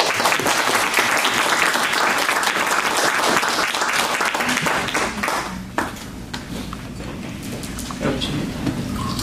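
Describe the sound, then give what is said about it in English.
A crowd applauds with dense, steady clapping that stays loud for several seconds, then thins slightly into scattered claps and murmuring voices toward the end. “Give him big applause.”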